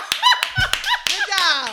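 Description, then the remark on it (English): Four sharp hand claps in a steady rhythm, spaced about a third of a second apart, ringing out over high, sing-song voices and laughter. “and you clapping too hard.”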